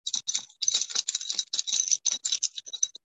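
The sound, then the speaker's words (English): A very weak, soft, high-pitched bell on Reggie's collar tinkles in quick, uneven bursts for about three seconds, a light shimmering ring with no one speaking, sounded as an indication during a meditation practice. “So very, very weak bell.”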